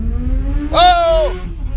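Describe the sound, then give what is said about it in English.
A passing motorcycle's engine revs hard in one loud burst of about half a second, its whining pitch rising and then sliding back down over a steady low traffic rumble. “Oh, did you hear that? That guy was an animal. He's on a motorcycle.”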